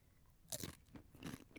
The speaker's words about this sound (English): Do it slow, though. I'm not going to do it slow. I'm going to chew it as fast as I can.